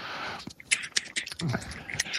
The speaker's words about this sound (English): Yeah, he's sitting there clicking his lighter. Jesus Christ.